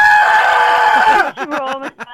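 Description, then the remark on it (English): A woman's voice re-enacts a frightened scream: a loud, sustained shriek lasting about a second, breaking into several short, choppy wailing bursts, unaccompanied. “Do the scream for me that you did.”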